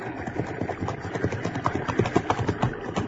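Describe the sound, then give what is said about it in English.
The hooves of two ridden horses approaching at dusk by a stream, a sorrel and a jet-black horse named Lobo, clop in a quick, uneven rhythm of overlapping beats, with a steady low rumble underneath and no voices. “I stopped to cross a stream, when from the gathering shadows I saw two horsemen approach.”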